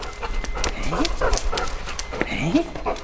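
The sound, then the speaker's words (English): A 4-year-old Labrador detector dog of the Canada Border Services Agency, trained in narcotics and firearms, pants in quick, breathy bursts at the Lansdowne border crossing in Eastern Ontario. The panting is broken by a couple of short rising whines, against steady low background noise. “We have detector dogs trained in narcotics and firearms.”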